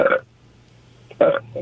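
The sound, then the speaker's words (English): A couple of short, feeble belches made by swallowing air, moderately loud, separated by a second-long pause, with a smaller trailing burp at the end and no talking. “All right, go air swallow it and give us your best belch.”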